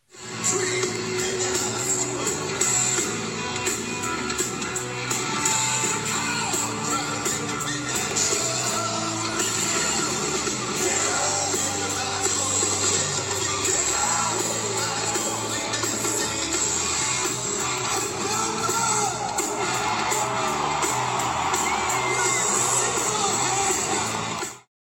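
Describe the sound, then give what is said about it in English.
A loud live rock concert recorded at a show, with the crowd cheering, played continuously: a dense full-band wall of guitars, drums and vocals holds steady from start to finish before cutting off abruptly. “And here's a little clip from the other night's show.”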